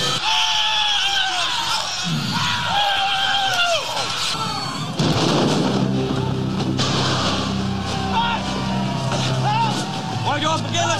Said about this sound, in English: So if you didn't know, I guess that when the guy jumps, that scream